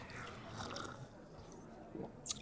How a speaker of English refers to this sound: It's like a... We're slurping.